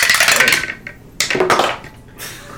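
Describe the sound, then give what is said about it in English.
Dice rolled for a perception check clatter into a wine cup in two loud bright rattling bursts, followed by a softer trailing rattle, with no voices over them. “are you the one dropping dice tonight?”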